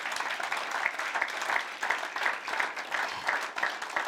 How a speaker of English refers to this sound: Oh, give the Lord a better hand clap than that.